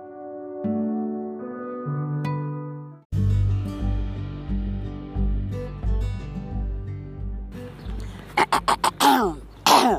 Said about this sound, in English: Let me clear my throat.